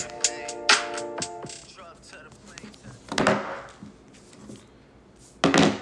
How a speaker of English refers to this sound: Stop clicking that pin, brother.